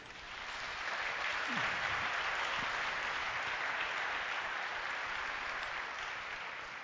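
A crowd at a church service claps steadily for several seconds, a dense, even wash of applause that holds at a fairly constant level before tapering slightly at the end, with no voices over it.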